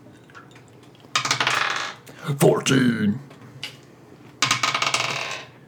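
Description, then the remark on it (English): Two twenty-sided (d20) dice clatter and rattle across a hard tabletop in two separate bright bursts, each lasting under a second, with a voice speaking briefly between the rolls. “All right, roll 2 d20s.”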